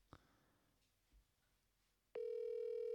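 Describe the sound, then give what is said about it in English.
After a couple of faint clicks and near silence, a loud, steady telephone dial tone of an outgoing call being placed cuts in abruptly and holds unbroken to the end, with no voices present. “it seems like we have him on the phone.”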